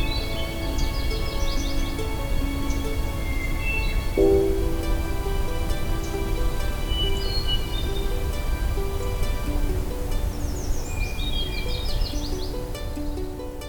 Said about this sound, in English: In this third part of my May morning hike, we'll be listening to songbirds such as this hermit thrush, and later we'll be listening to a very songful myrtle warbler.